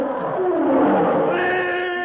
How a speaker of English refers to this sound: Simultaneously with the closing of the door, a huge black-maned lion springs toward them with an earth-shaking roar.